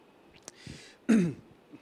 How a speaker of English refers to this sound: I'm coughing because I haven't preached for a few.